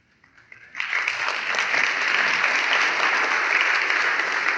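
An audience applauds a couple's 45th wedding anniversary, starting with a few scattered claps before swelling into steady, dense clapping that holds at a strong, even level to the end.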